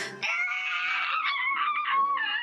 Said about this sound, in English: This chilling screech goes to the air as her body begins to turn into the black ash and crumple in on itself, and she melts away into dust.